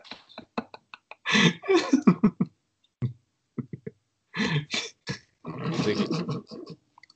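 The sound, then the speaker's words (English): A man has a heavy coughing fit, with clusters of harsh, rasping coughs in several loud bursts separated by short pauses and a few sharp clicks, with no talking. “I think yeah, he's probably coughing up a lung.”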